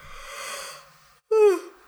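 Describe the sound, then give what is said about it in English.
A long breathy inhale followed by a short, louder voiced exhale that slides downward in pitch, like a yawn trailing off, with no talking. “Now you're gonna yawn?”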